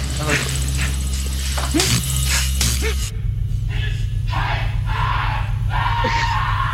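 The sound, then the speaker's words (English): A man, the film character Han Solo, lets out anguished, strained screams and cries in bursts, loud, over a dense movie soundtrack with a steady low rumble and scattered crashing noise. “Let's get to those, you know, poor Han anguish screams.”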